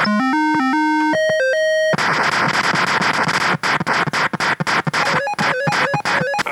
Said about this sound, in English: Oh man, I can barely hear what you're saying now because of that beeping.